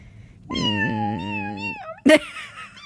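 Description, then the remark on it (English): A cat lets out one long, drawn-out meow that wavers in pitch, loud, then gives a brief, sharp yowl a moment later. No one is talking. “Oh, you should have a room for me, and there's just lots of kitty cats.”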